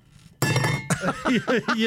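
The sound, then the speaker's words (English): A water bottle is tipped over to imitate a cup spilling, a sudden loud clatter, a bright, ringing knock that hangs briefly, followed by a voice making short vocal sounds. “you could audibly hear the cup tip over, and then it was just like, oh!”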